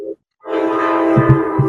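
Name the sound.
train horn passing nearby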